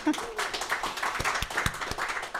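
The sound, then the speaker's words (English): A short burst of audience applause, scattered hand claps forming a dense patter at moderate volume with a few sharper claps standing out, lasting only a couple of seconds. “So I think this is, we can even start with a small applause to get you started.”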